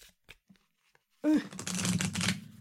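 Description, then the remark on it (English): A few faint taps and clicks, then a loud burst of a round card deck being riffle shuffled, a dense papery ripple lasting about a second before stopping. “I do get so worried about shuffling round ones over here.”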